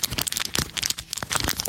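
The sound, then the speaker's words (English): Busy crinkling of a wad of paper being crumpled in the hands, a dense run of small crackles and snaps that mimics the pop of a crackling fire, with no voices. “that you were doing kind of the old crinkle paper fireside chat noises where you take a wad of paper.”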